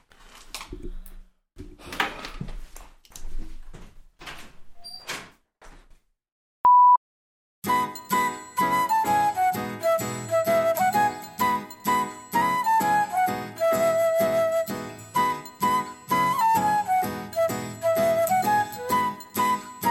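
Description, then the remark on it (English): A rope of bells like sleigh bells, hung on a door wall for an adopted dog, jingles and clatters in loose, irregular shakes, a short high beep cuts in, then a bright, steady, rhythmic jangling carries on with a ringing melodic line through it. “So we have like a bell, like a rope of bells, mm-hmm.”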